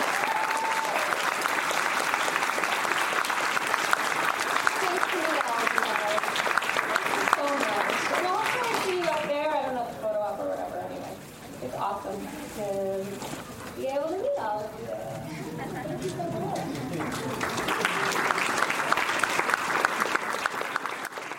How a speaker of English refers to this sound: And everyone, can we just give her like a major round of applause?